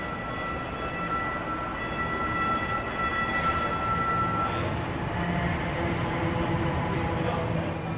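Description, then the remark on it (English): A train rumbles steadily as it approaches a station platform, its broad mechanical roar filling the space with sustained tonal whines and hums. No one speaks. “Train approaching. Please stand clear of the platform edge.”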